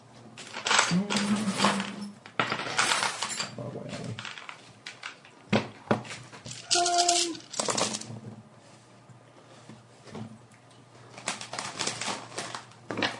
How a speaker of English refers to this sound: You always roll ones when it matters. Rolling dice for the same result, last four rolls. Don't they make some sixes on the sides?